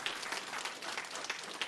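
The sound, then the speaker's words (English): An audience claps together in a steady wash of dense, overlapping applause, moderately loud and sustained throughout with no voices above it. “You can clap for a reward, right?”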